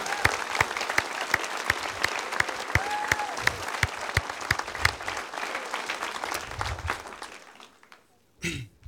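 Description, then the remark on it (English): An audience applauds steadily for several seconds, a dense wash of claps with a few louder sharp hits, fading out toward the end, followed by a brief murmur of voices. “Now, why did you guys clap?”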